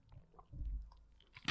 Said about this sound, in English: Dude, you know what's a great idea? Is chewing ice next to my phone on a podcast. You know what sucks? I'm like looking at you and I just start hearing crunch, crunch, crunch, crunch.